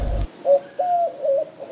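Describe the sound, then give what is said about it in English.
A carrier pigeon, one of the King's carrier pigeons, coos: a series of soft, throaty warbling coos rolling one into the next in a steady rhythm, with no voices around it. “Dave, it's one of the King's carrier pigeons. We've got a carrier pigeon.”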